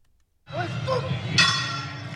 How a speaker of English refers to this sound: And in order to do that, we have to throw it to the referee Red Shoes to ring the bell.